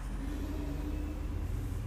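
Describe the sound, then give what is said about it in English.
A steady, deep engine rumble from a heavy truck going by outside, a low droning hum that holds fairly constant throughout, with no voices. “And good God, could there be any more trucks that come through today?”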